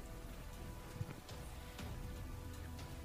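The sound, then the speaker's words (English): Steady rain falls throughout, a dense, even hiss with scattered sharper drips and patters landing on a surface. No voices, just the continuous wash of rainfall. “do we know when this rain is going to be ending?”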